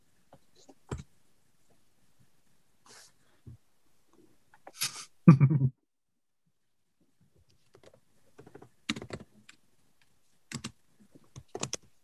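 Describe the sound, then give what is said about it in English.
Scattered clicks and clacks of someone typing on a computer keyboard, typing out what was rolled, coming in short irregular bursts with pauses between them, fairly quiet, with no one talking. “The amount of typing makes pretty clear what just happened on roll.”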